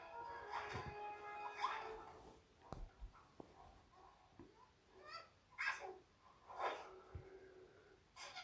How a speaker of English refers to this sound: The dog's quite clearly getting a rub. You notice that?